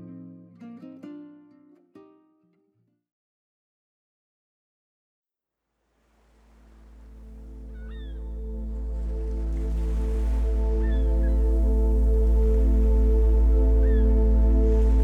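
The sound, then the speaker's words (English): After a brief bit of music and a short silence, a steady rush of ocean waves on a beach slowly fades in and grows loud, with soft sustained musical tones beneath. “Tonight's meditation will invite you to walk on the beach and allow the soothing sounds of the water to relax you into sleep.”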